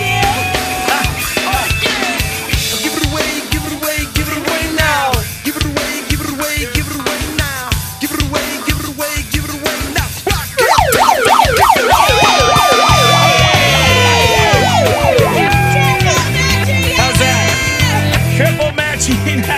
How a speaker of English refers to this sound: The air horn? Yeah.